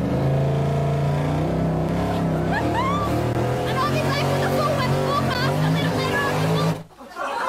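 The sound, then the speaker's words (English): A car engine revs loudly on a top end mud racing track, being tested on the track's first use of the season, its pitch climbing and falling in repeated surges for about seven seconds before cutting off abruptly. “Speaking of motorsport, it's top end mud racing season.”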